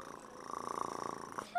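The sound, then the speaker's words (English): A woman patient's voice imitates a cat's purr, a steady rhythmic rumbling pulse lasting over a second, moderately loud, ending with a brief higher vocal sound. “Purring like a cat.”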